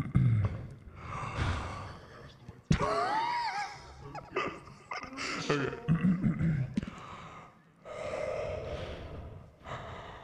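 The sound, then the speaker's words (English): Heavy breathing right into the microphone, with loud sighing exhales, gasps and snorting breaths repeating over about ten seconds, without any talking. “Stop breathing so heavy into the mic.”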